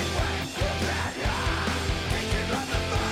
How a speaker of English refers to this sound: I do have a newfound respect for... It's hard to yell like this. It is. It's hard to yell.